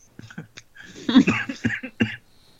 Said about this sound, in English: Oh no, I coughed into the Skype. Everyone disinfect your Skype.